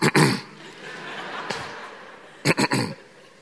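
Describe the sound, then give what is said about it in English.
A voice imitates throat clearing: a gruff, raspy burst, a softer pause, then a quick run of three short harsh rasps near the end. No words are spoken. “My father was always clearing his throat. So even if I haven't seen him, you hear the sound.”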